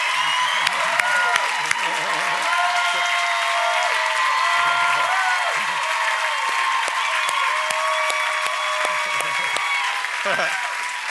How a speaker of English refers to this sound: Amen. If you can see him there, clap your hands.